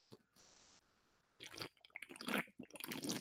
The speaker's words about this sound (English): And I went to take a sip of my water, and lo and behold, instead of water, it was Arnold Palmer. Still left from earlier today, where I poured the Arnold Palmer that Jonathan Hutton bought me yesterday into my cup. I'm going to sip it now.